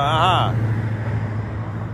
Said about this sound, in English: I know I'm not going to mimic it. So here's a hot truck.